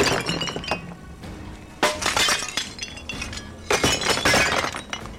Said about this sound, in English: The now empty pots from her silly little plants smashed against the walls.